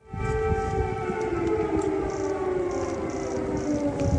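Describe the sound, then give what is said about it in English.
Air raid sirens wail steadily and loudly in Kyiv, Ukraine, as Joe Biden walks with Ukrainian President Volodymyr Zelensky, their sustained layered tones filling the space with a slight echo, over a low rumble of background noise and no talking. “Air raid sirens wailed as Joe Biden walked with Ukrainian President Volodymyr Zelensky in the Ukrainian capital, just days before the first anniversary of the Russian invasion.”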